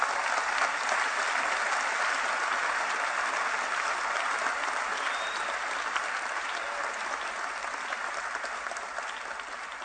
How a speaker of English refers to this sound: Why don't you give the Lord a wonderful clap of praise?